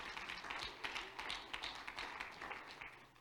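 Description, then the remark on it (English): A crowd claps their hands to the Lord in a steady, dense wash of overlapping hand claps that holds for a few seconds and then starts to thin out, with no voices standing out. “Clap your hands to the Lord if you're thankful for that.”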